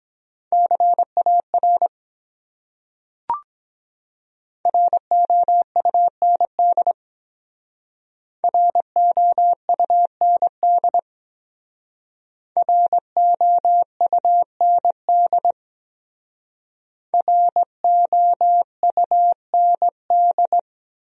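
Morse code practice beeps of common English words at about 17 words per minute: a steady mid-pitched tone keyed in quick dots and dashes, sent in five separate words with pauses between, plus one brief click early on.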